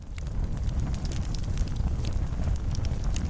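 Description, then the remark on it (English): Kitchen fires lit under pots and saucepans of well water burn steadily, with a deep roaring rumble and scattered sharp crackles and pops throughout. Fairly loud, with no voices. “They lit all the fires.”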